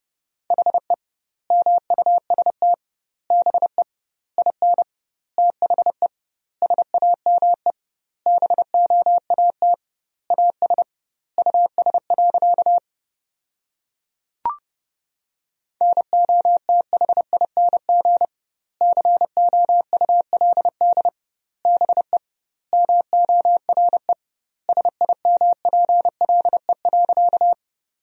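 A single steady mid-pitched tone keyed on and off in quick Morse code dots and dashes at about 30 words per minute, sending English sentences built from the 500 most common words with double word spacing, with one brief pause and a faint click partway through.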